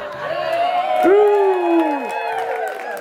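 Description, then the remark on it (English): A crowd claps and cheers, with whoops and shouting voices rising over a steady wash of applause for a few seconds. “You clap now, but little do you know what I have in mind.”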